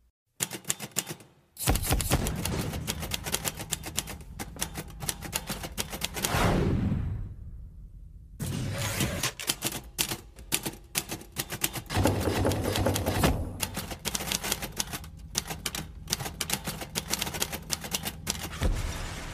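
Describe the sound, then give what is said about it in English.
Rapid, loud typewriter keys clatter in dense bursts, played at the opening of a concert as the lights go down, broken by a brief sliding sweep and a moment of near silence before the clacking resumes at full pace. No one speaks. “Standing in that crowd, the lights going down, the screams, and then the typewriter clicking.”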